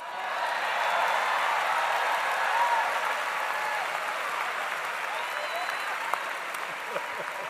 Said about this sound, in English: And to the members of the City Council, and especially the 13 newly elected alderpersons, congratulations. This is your day too, and you deserve recognition, and I'm going to turn around and clap for them.